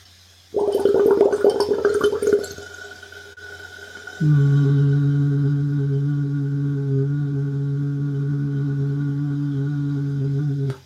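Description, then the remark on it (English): Bubbling noise from blowing through a straw into water as a voice exercise, first unvoiced for about two seconds, then a steady low hummed voice sounding through the bubbles for several seconds until it stops. “The Straws and Bubbles exercise from our This Is A Voice book”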